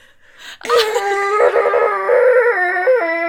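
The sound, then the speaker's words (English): A voice imitates a leaf blower with a loud, sustained, buzzy tone that starts abruptly and holds steady for about three seconds, wavering slightly in pitch like a drawn-out howl. “You take a leaf blower and you go.”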